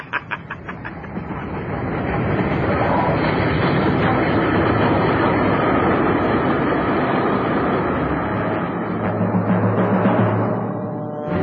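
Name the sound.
train arriving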